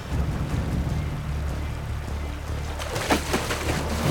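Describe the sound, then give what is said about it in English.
River water rushes and churns steadily over a low rumble, then a few sharper splashes break through toward the end, fairly loud. “He listened to the splashing of the river, trying to hear the salmon.”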